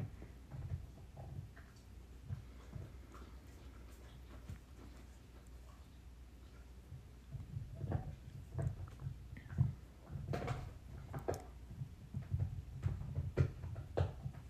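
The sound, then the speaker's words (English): A dog chews with irregular wet clicks and smacks, sparse at first and then busier and louder in the second half, with no one talking. “As my dog chews away in the background.”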